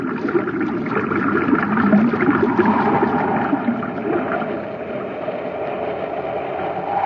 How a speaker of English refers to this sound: look at the water level against the wall of the shaft. It looks like it's rising. You're right, Hap. That pipe isn't drawing water out, it's forcing it in. Someone reversed the pumps.